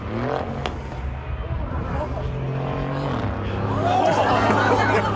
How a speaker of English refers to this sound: Now, for big crashes, you need to go to Formula One. We had the British Grand Prix on the weekend. Now, to give you a sense of the danger, this is the car that carries the doctors around doing a lap.